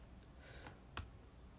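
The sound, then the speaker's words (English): Two quiet, sharp clicks of keys being typed on a computer keyboard, spaced about a third of a second apart, with a faint background hush and no voices. “I'm just typing something on my computer.”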